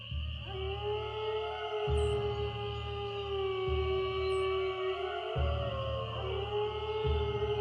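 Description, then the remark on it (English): An eerie, ghostly moaning howl stretches on in long, wavering tones over a deep, pulsing drone, steady and loud throughout with no voices. “This is the this is the moaning that he does.”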